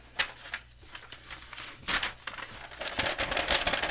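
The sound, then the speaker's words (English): Dry paper crinkling and crumpling in irregular bursts, with sharp rustles and a louder, busier stretch of rattling toward the end. No voices. “But lots of rattly paper.”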